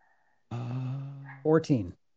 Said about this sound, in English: Sorry if you can hear my dog.